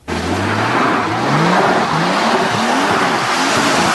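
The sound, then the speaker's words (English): Car tires spin on a hail-covered road at a gas station in South Surrey on an October morning after a hailstorm, while the engine revs in repeated rising and falling surges, with a steady loud hiss of slipping rubber and grit throughout. “Who would have guessed we'd be dealing with spinning tires at a gas station in October?”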